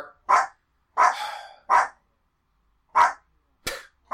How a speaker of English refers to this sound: I don't know if I can keep going with the review because of the dog barking. Oh, there. Oh, good. Right in my ear.